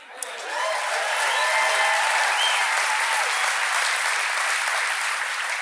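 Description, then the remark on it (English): A large audience applauds steadily, a dense wash of clapping that swells in within the first half-second and holds at a constant level throughout, with a few faint voices mixed in. “I want to tell you that I really appreciate that applause because I took this as my mission because I thought, what is the practical thing we can do, first to help human beings and second to stop the fear?”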